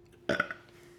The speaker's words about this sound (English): Obligatory burp.